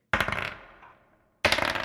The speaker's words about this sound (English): Very similar to the other hallway is Little Buddy hits this pressure plate that you hear depress.